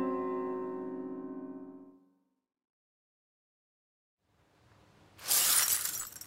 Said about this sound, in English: I smacked into it. It smacked onto the floor and... 7 years bad luck, is it? Bring it on, I suppose.